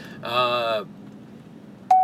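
Electronic beeping: a buzzy, tone-rich beep lasting about half a second, a short gap with low background hum, then a sudden loud, pure beep cutting in right at the end.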